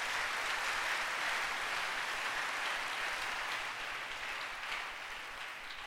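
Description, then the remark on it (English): A crowd applauds during a Bible reading about the wise men and the star, clapping steadily for about six seconds in a dense, even patter of many hands with no voices over it, fading slightly toward the end. “You can clap. There's nothing wrong.”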